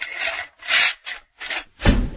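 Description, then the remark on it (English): A heavy vault door, the door of the Sean Teschner Show Ear Candy Vault of archives, creaks and grinds open in five rough, rasping strokes separated by short pauses, the last one deeper and loudest. No voices accompany it. “See if this door will open.”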